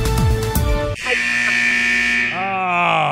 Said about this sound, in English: No, the buzzer.